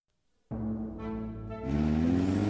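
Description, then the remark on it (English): A patrol car's engine suddenly roars to life, its low harmonic drone steady at first, then swelling louder with a rising pitch as the car accelerates away, pulling out into rush hour traffic. No voices. “The patrol car pulled out into the dreary rush hour slog”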